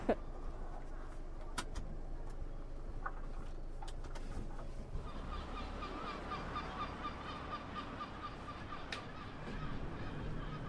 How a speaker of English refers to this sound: Lots of seagulls out today. There is, yeah.